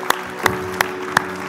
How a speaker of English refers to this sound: Come on, let's stand and give Jesus a hand clap of praise. Would you just join me? We honor this King Jesus.